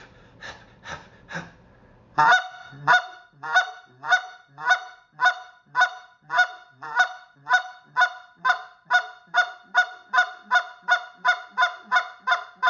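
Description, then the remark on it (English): A goose call imitating geese, loud, played as a beginner's goose-calling lesson: three quick clucks, a short pause, then a long steady run of about twenty evenly spaced honks that gradually speed up, with no talking. “GOOSE CALLING: MEAT & POTATOES CALLING LESSON for BEGINNERS”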